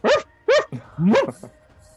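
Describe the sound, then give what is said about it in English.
Three sharp dog barks in quick succession, each a loud harmonic burst, followed by a softer yelp trailing off; no one is talking. “But next up is the dogs, who are like...”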